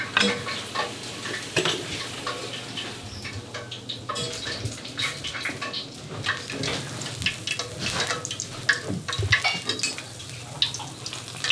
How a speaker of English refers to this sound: So I'm just going to put the oil on for frying the dough.